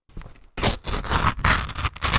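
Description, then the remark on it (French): Crepe paper being torn slowly, a soft crackly ripping that starts after a brief quiet moment and continues in a few uneven pulls with tiny pauses between them. “On a un papier crépon. De crépon. Donc, le son. Beaucoup plus subtil, celui-là. Déchirure.”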